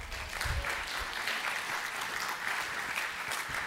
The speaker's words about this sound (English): Hey, you kids, give our kids a hand clap.